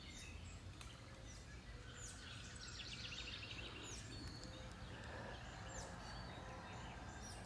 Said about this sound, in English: You can also hear the beautiful blue jay.